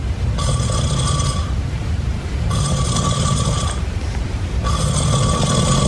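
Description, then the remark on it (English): A sleeping man snores loudly, repeating three buzzing, rattly bursts with only brief pauses between them, giving a fast, steady rhythm over a constant low rumble. No one speaks. “Does it sound like his snores are pretty rapid?”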